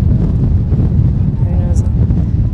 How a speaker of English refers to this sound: Oh, big, big wind gusts. I wouldn't mind the wind as much if the sand wasn't going with the wind. if you weren't getting some grit in your mouth.